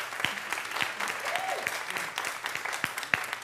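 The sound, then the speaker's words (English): A group claps steadily for the musicians, a dense wash of many hands with a few louder individual claps standing out, sustained throughout with a faint voice rising briefly in the middle. “we always clap for the singers, but we got the musicians who are powerful too.”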